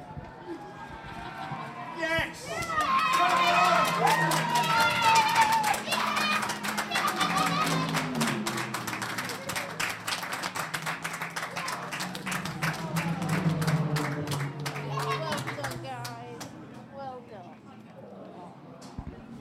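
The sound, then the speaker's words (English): The Stella Motorsport team claps steadily and quickly for about fifteen seconds at the racetrack pit wall as their driver crosses the line in a GT4 race. Sharp hand strikes, with voices and outdoor noise mixed in underneath before the clapping fades. “I'm in the Stella Motorsport garage and the team have run out to the pit wall. They're clapping their man across the line.”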